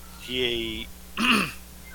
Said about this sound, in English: And I hear a cat freaking out.